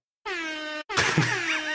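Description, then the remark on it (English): A loud, brassy air horn blares in a short blast, pauses briefly, then sounds again in a longer, harsher burst with a warbling edge, alone with no talking. “That's the breakup air horn.”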